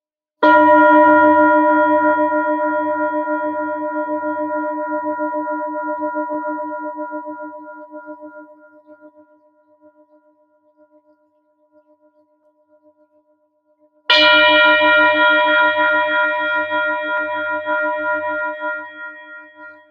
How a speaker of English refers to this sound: Okay, so changing gears now, this time I want you to allow the frequency of the singing bowl to really vibrate all the way through that sacral, bringing it into perfect balance.